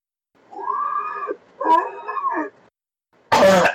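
throat clearing and coughing

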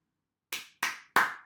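single hand clap

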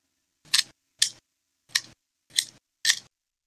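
pencil being sharpened

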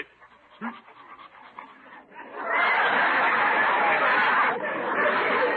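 dog panting and whimpering

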